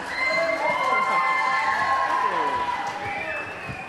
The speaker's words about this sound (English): So can we give him a round of applause, please?